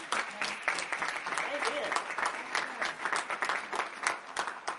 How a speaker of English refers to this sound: And I think you ought to give them a round of applause for that.